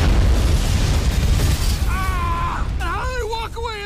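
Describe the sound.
A loud, rumbling explosion sound effect with heavy low-end roar dominates the first couple of seconds, then fades as a voice cries out over the lingering noise.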